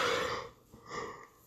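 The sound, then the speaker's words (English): A drawn-out yawn: a breathy, voiced opening that fades, then a shorter, higher, tonal second phase that trails off, with no talking. “I did not mean to yawn like that.”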